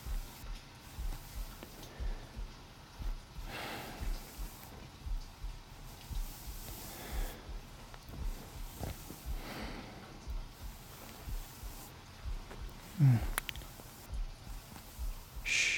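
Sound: rain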